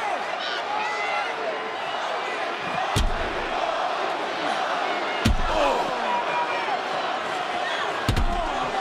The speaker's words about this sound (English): Kross just launched the elbow of Bobby Lashey into the ring post, and now with a steel chair.